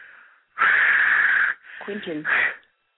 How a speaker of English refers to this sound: Now, you're breathing in the phone very loudly. I was holding my breath.